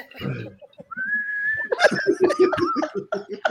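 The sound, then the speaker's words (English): A person whistles a long, steady note that slides into a wavering tune, fairly loud, with bursts of laughter or chuckling breaking in around it. “You still whistle?”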